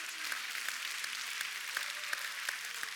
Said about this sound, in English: Come on, let's use those hands to clap to the King of glory. Hallelujah. Hallelujah.